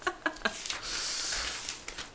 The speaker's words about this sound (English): I'm turning pages.